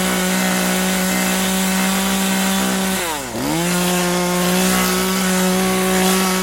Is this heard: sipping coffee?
no